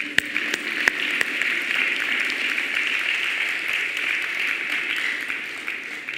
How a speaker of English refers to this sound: Give a clap offering to God.